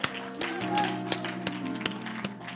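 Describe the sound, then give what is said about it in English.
A church audience claps for God's word during a service, a steady scatter of sharp, irregular claps lasting a couple of seconds over soft, sustained musical tones in the background. “Let's just set our Bibles down and let's just give the Lord a hand clap for his word this morning.”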